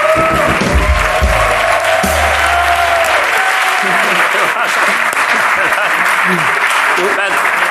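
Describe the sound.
An audience breaks into steady, dense applause that holds at an even loudness for several seconds, with some voices and a few low tones heard beneath the clapping early on.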